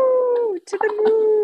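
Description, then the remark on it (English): A person howls like a wolf, holding a long steady wavering note that dips briefly, then breaks into a second shakier howl. Loud and unaccompanied. “Woohoo! To the moon. Howling at the moon.”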